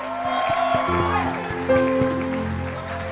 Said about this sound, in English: Clap our hands for the instrumentalists.